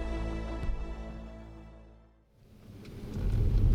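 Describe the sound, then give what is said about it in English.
A self-driving car's steady engine hum fades away as it leaves the Zhang residence, giving way to the dense, hissing wash of heavy rain that swells and fills the scene. No voices. “As a car drives itself away from the Zhang residence, rain blurs the world outside.”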